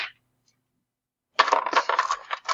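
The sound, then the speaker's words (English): A brief tap, a second of silence, then a handful of eight dice clatter and tumble across a hard desk in a dense, rattling burst that fades out after about a second. Fairly loud, no voices. “So many dice. I can't even fit them all in my hand. So many dice on the desktop.”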